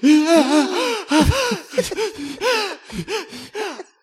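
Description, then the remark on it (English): A voice imitates a crowd's gasp of surprise: a series of sharp, breathy intakes with rising and falling pitch, fairly loud, mixed with wheezy, laugh-like bursts over about four seconds. “And it has to be when she finished this sentence, the gasp that went out of the collective, and it has to be five lines long.”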